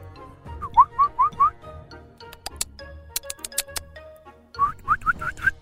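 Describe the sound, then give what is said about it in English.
A person whistles a bird call imitation: a quick run of four short, rising chirps, a stretch of sharp ticking clicks, then five more rising chirps. No talking. “I was trying to help. I was trying to be a bird.”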